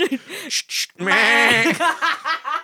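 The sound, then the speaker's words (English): A person does a loud, wavering bleat in imitation of a ram, a quavering sheep-like cry, surrounded by short bursts of laughter. “That's the sound it makes when it fires.”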